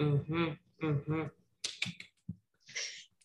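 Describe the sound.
One person clapping on behalf of those who cannot be there to clap, a handful of sharp, uneven claps, following two short sung or cheering voice sounds at the start. The claps are fairly loud and spaced irregularly rather than in a steady rhythm.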